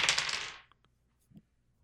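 Dice are rolled for a culture check and rattle and clatter across a hard surface for about half a second, a bright rapid jumble of clicks, followed by a few faint scattered taps as they settle.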